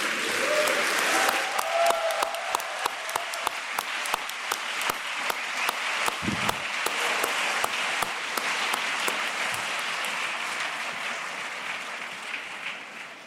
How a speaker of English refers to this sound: Well, from the whoops of applause that greeted that last contribution, you might be unsurprised to know that in the pre-vote, the number of people voting for the motion was 149.